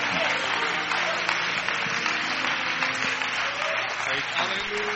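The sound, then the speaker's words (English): A church audience claps hands in praise steadily and loudly for several seconds, a dense wash of overlapping claps with voices and a faint tonal hum underneath. “Come on, clap your hands as He comes this morning.”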